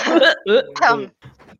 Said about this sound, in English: sorry, my bad, I have a cough.